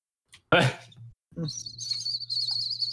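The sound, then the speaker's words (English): After a brief burst of vocal noise, a voice imitates a whistling kettle with a steady, high-pitched, slightly wavering whistle that holds for over a second above a low hum. “Stop making that noise. You sound like a kettle.”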